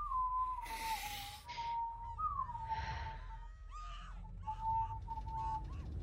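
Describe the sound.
Someone whistles the Doctor Who theme tune, steady and sustained with gliding notes, moderately loud, interrupted by a few breathy, hissing bursts of noise; no one speaks.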